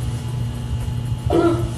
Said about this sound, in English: Wow, he stops before he farts. It's like he wanted everyone to know what he was doing.